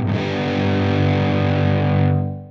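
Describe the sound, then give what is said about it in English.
A loud, harshly clipped tone from a signal boosted so much that the top of its waveform is flattened, with a squashed, buzzy edge, sustained steadily with dense harmonics before the bright upper fizz drops away near the end; no voices. “This is when the signal gets boosted so much that the top of the waveform gets completely flattened. This makes it sound squashed and harsh, like when you crank the volume all the way up on a cheap speaker.”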